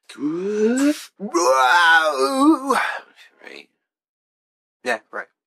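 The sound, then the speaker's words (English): A tired person lets out a long, drawn-out yawn, two groaning voiced stretches with wavering pitch, followed by a few brief breathy sounds and short clicks. “I'm just tired. Been a long day. Reverse yawn.”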